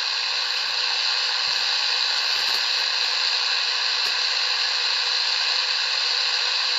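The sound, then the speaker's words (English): Steady, loud radio static from a spirit box hisses without a break for about seven seconds, a dense wash of white noise with a few faint crackles and no voices. “Okay, clearly I'm gonna get some sort of other interference going.”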